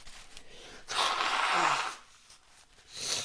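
Someone blows their nose: a long, forceful, airy honk lasting about a second, followed by a shorter, softer blow. No one speaks.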